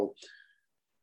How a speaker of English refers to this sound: Sorry, coffee sip there.